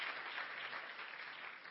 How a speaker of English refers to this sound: Why don't we give a hand clap of praise for the ministry that is in New Jersey.